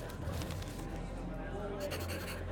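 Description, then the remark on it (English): A left-handed man writes with a pencil on a paper pad, scratching steadily across it: a continuous dry scribbling that runs the whole time over a low background hum and faint murmuring voices. “You write with your left hand.”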